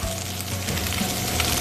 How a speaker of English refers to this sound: So you let your pan get hot, then you let your oil get hot, and then you start adding your products in. So we're gonna add the chicken in first. And that's what you wanna hear. You wanna hear the sizzle.